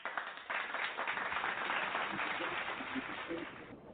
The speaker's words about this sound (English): But yes, trying to clap, but it's not a